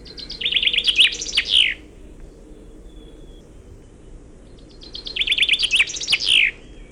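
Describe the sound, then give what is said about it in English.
A finch sings two bright, rapid trilling phrases, each closing with a distinct flourish known as a Wallonian or French song ending, separated by a pause, over a steady low background hum with faint insect-like noise. “Finconeers call this a Walserzang, or in English, a Wallonian song, or a French song.”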